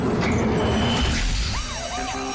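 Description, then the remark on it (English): A game show alarm siren from the vault game Beat the Bank on Move 100 wails in repeated rising and falling sweeps, entering after a second or so of loud, noisy clatter and continuing strongly to the end. “Thank God we heard those alarms.”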